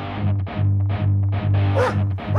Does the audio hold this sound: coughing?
no